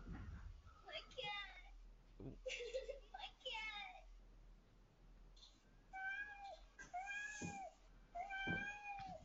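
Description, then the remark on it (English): A cat meows repeatedly, a series of drawn-out, wavering cries that grow louder and more insistent toward the end, with faint background noise throughout. “That's a definite real cat, isn't it? That is definitely a real cat.”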